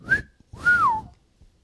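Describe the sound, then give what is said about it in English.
Someone whistles two notes: a quick short tone, then a longer one that swells and glides downward, with a soft breathy noise under each. “I'm telling you, all I'm have is laugh tracks, awls, woo, or whistles.”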